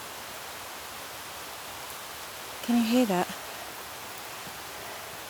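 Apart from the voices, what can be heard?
rain falling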